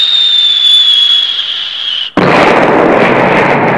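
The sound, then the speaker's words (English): A high, steady whistle drones for about two seconds, then cuts off into a loud, sustained roar of explosions as copper core fragment missiles crash into a tower turret, fifteen more following the first, dense and crackling, with no voices. “15 other missiles followed immediately after.”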